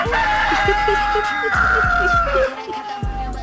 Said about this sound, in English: Should I go back to the rooster? No!